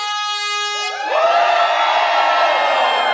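A brief, steady blast from a ram's horn or trumpet gives way to a large crowd of people aged 50 or above erupting into loud shouting and cheering, a dense roar that holds strong for the last two seconds.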